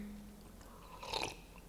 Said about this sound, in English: Sorry. Did you just hear that gulp? I need my morning coffee.